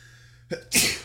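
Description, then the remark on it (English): A single sneeze: a quick sharp intake of breath followed by a loud, breathy burst that fades out over a fraction of a second, with no talking. “Bless you.”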